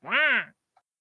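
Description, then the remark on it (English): A single nasal quack, a person's voice imitating a duck call, lasting about half a second and fairly loud, followed by a brief faint click. “You know, use those things to get the ducks out, you know.”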